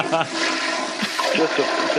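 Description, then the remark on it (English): A toilet flushes with a steady, rushing wash of water that fills the whole moment, while someone's voice briefly cuts in over the noise. “Was that a toilet flushing?”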